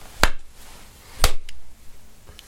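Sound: hand clap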